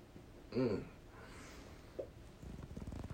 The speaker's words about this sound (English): I don't mean to be yawning and causing a ruckus, because my voice is amazing and we all know it, especially me.